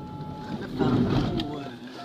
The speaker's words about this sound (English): And here they're developing a remote-controlled car. It's a prototype, scavenged and put together in their workshop.